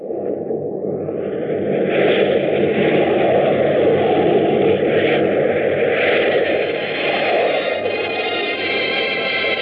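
A steady, loud airplane engine drone in flight, a dense low rumble with a higher hissing whine layered above, holding constant throughout with no voices.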